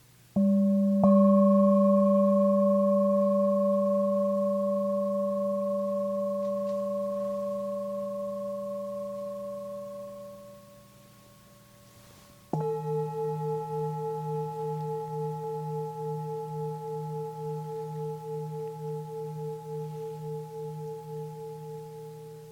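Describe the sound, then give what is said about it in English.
A meditation bell strikes and rings out with a steady, pure tone that slowly fades, then a second bell of a different pitch sounds with a gently pulsing shimmer as it sustains. No voices. “Notice the sound of the bells that arise.”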